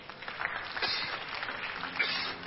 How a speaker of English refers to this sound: Let's put our hands together for the choir.